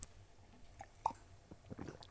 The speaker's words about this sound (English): It sounds good anyway. It tastes tropically in total. Tropically in total, a bit like Lilt. No, that's totally tropical. Completely different. Okay. Right, here, have a sip.